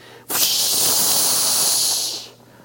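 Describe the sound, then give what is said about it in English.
A shaken bottle of pop bursts open with a sudden, loud hiss of spraying fizz, CO2 bubbles and soda syrup spraying everywhere; the hiss holds steady for about two seconds, then tapers off quickly. “CO2 bubbles and soda syrup sprayed everywhere.”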